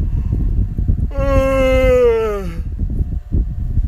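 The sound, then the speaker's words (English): A single drawn-out vocal yawn from someone who just got off work, about a second and a half long, its voiced tone sliding gradually downward in pitch before trailing off, over a steady low rumbling background. “As you can see from the yawn, just got off work and, you know, what my 9-to-5 workers, man.”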